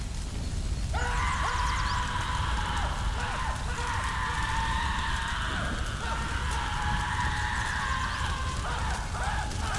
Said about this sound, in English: What in the flying fuck? What the fuck is that? Sounds like a man screaming.